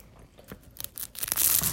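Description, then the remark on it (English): Close-up crackling crunch of the flaky phyllo pastry of a baklava breaking apart, recorded with a phone held close, starting with a few light crisp snaps and building into a dense, loud shattering crunch near the mic. “The last thing we're having is this baklava. Are you ready for more? Wait, you have to bring the phone close. I want to get the crunchy noises.”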